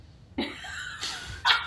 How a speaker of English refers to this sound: We have dogs chewing bones at our feet.